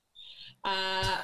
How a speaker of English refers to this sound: Sounds like you got a canary there. You got a canary?